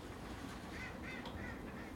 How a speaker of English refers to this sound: A little duck fight going on over there. Oh, a little bit of argy-bargy.